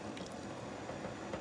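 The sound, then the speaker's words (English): Cooking oil pours from a cup into a pot in a steady, soft stream, a continuous gentle liquid hiss with faint glugging texture, no voices present. “I'm just going to pour my oil in.”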